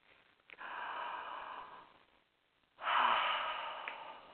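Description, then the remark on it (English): A long, steady inhale, a brief pause, then a fuller, louder exhale that releases all the air, breathy and noisy with no talking. “Take another deep breath in. And exhale completely.”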